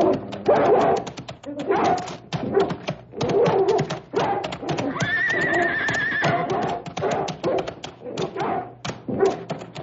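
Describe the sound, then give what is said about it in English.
A dog attacks, barking and snarling in rapid, loud bursts, with a high sustained yelp partway through and agitated voices mixed into the commotion. “Please turn the dog loose. Get him.”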